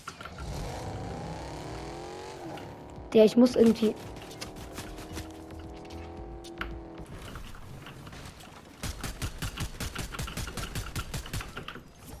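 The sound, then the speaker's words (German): A video game car engine revs and accelerates with a steadily rising whine, followed by a rapid rattling burst, while a person talks over it. “Auto tag ich, Auto welches?”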